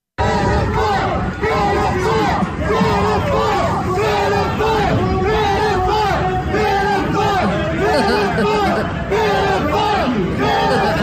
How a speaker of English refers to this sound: And then this is what happened. He was heckled to high hell.